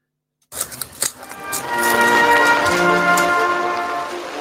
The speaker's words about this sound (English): the forecast rain has arrived. Absolutely, it's absolutely hammering it down.